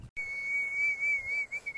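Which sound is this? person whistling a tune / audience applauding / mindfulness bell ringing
person whistling a tune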